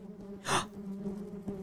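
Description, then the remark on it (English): A voice hums a low, steady buzz in imitation of a bee, held for under two seconds, with a short breathy gasp-like burst near the start. Fairly quiet. “It's a spelling bee. Spelling bee. It took me a second. I was like, it's a buzzing.”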